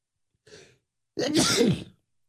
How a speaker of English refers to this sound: Wow, that's never happened to me. I've never had a like sneezing fit while I'm doing it.